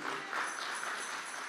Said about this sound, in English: Man, that deserves a hand clap for the Lord. Hallelujah.